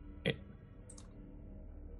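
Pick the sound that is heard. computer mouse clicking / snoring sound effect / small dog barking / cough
computer mouse clicking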